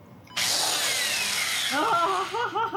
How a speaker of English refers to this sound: And then to get into the skull, you need to drill some holes into my skull. So you get the drill ready and go. All right. 3, 2, 1.